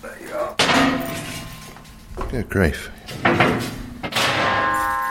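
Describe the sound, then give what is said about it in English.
A metal panel on an old drying rack is lifted to show the old hot water pipes, with a few loud clanks and scraping rattles in separate bursts, while a person speaks briefly between the bangs. “And if I lift this metal panel up, you will see the old hot water pipes.”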